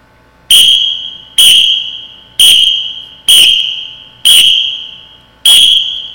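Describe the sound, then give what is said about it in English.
A whistle is blown six times in a row: loud, shrill, high-pitched blasts spaced roughly a second apart, each starting sharply and fading briefly before the next. No one speaks. “If you blow it six times, the whistle.”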